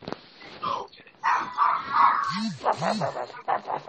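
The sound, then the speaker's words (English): A dog whines and whimpers in a few drawn-out, sliding cries, followed by several short, sharp barks, with people's voices mixed in around it. “I know what your dog's feeling. Your dog is feeling rough.”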